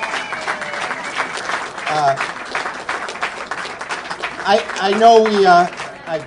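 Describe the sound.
An audience applauds steadily throughout, a dense wash of many hands clapping, while a voice speaks over it in the second half.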